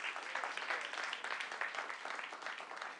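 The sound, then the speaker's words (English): A church audience claps for the Lord, many hands at once forming a dense, continuous wash of applause at an even level for the whole stretch, with no voices standing out. “Come on, y'all give the Lord some hand clap for that.”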